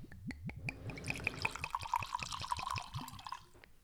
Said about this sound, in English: There's a lot. That was a healthy pour. Sorry. Hopefully it's good. I was focusing on the sound of the glugs. I thought you were just going to keep going. It just starts overflowing.